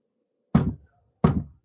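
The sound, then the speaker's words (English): Two solid knocks on a wooden surface, given as a yes answer during a spirit-channeling session, spaced about half a second apart, each a dull thud with a short decay, heard alone with silence around them. “Knock twice for yes and once for no.”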